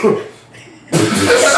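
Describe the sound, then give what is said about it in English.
A short cough bursts out, followed after a brief pause by a longer, harsh, raspy cough, loud and breathy, as if a voice is imitating the sound. “This nigga coughs.”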